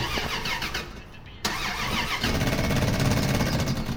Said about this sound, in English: Now, can you just turn the engine over, please?